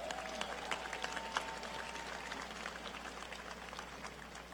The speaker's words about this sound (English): This energy out here in the city of Milwaukee today, you can feel it all over the state. So give yourselves a round of applause.